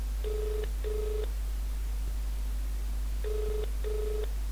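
A telephone ringing tone heard on the first of two outgoing phone calls: two paired double rings separated by a pause, clear and steady over a faint line hum, with no talking.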